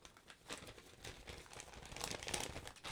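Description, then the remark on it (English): Continuous crinkling and rustling of sheets of typed notes being shuffled and handled, with irregular bursts of crisp crackle over about three seconds and no voices. “That is not him just ruffling some paper.”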